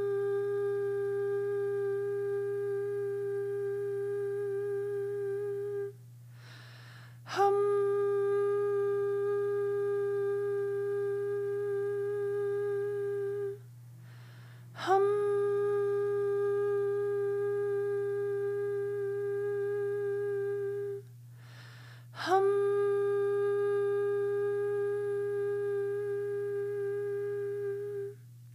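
A single steady chanted hum of the throat chakra bija mantra "Ham" is held for about seven seconds, then repeated after brief pauses, four tones in all, over a constant low drone. The chanting is even and clear.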